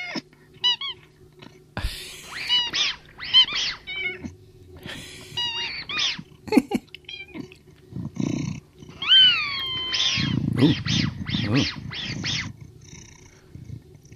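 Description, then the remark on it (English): A grey kitten pounces on and plays with a mouse toy on a sofa, letting out a run of high, wavering meows mixed with low, rumbling growls, fairly loud, coming in quick bursts over about fourteen seconds with no talking. “Finally, a cat noise.”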